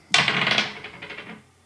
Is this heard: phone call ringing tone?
no